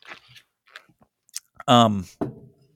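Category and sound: food or drink, sipping water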